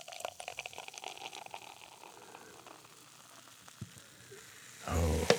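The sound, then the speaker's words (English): Steady fizzing and crackling as an effervescent beer is poured from a can into a tulip glass, bubbles hissing for several seconds before a louder, fuller gush near the end. No one speaks. “As I was pouring it in there, it was rousing. It's quite effervescent.”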